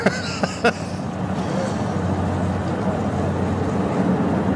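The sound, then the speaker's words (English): A steady, loud engine roar from a turboprop or twin-engine aircraft taking off on a runway in Irkutsk, with a deep continuous rumble and a couple of brief clanks near the start. “Taking off in. That's why it sounds like an old bus. Or train.”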